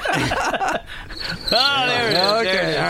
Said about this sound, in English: Crickets. We got the crickets thing.